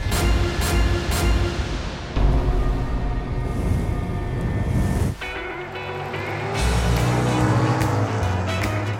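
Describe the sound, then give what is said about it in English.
Race cars roar past at high speed, their engines loud, with the whining drone rising and shifting as one car after another speeds by, and no voices heard. “Daytona Beach can be a loud place. It's known for auto racing, motorcycle rallies, and beaches that draw throngs of tourists.”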